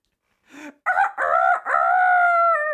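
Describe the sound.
A person loudly imitates a rooster's crow, a short lead-in note followed by a long, strained, rising-then-held call lasting about two seconds.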